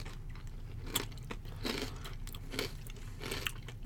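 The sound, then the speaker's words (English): Crunchy Kettle Brand dill-flavored potato chips being chewed during a taste test, with repeated sharp, crackly crunches at an irregular chewing rhythm over a low steady background hum, no talking. “I'm just eating.”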